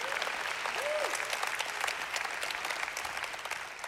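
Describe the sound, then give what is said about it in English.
An audience claps in a steady, dense wash of applause that holds at an even level throughout, with a brief vocal tone rising and falling near the start. “And just because we, oh yeah, you can clap right there. You can clap right there.”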